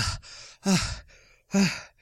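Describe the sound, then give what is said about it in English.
A person imitates being out of breath, huffing through a quick run of heavy, voiced pants and breathy inhales, fairly loud, with no words. “A boy runs up from Hayden's Ferry, and he's... absolutely out of breath, panting.”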